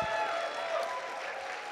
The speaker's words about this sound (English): But I'm very proud to announce our new organizing crew that's come on board. Round of applause for them, please.